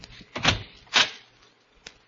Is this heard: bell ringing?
no